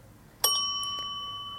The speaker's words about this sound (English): The bell coming from somewhere on you. You check your pocket. And you hear the bell again. The bell reminds you of my voice. Calm, safe, and reassuring.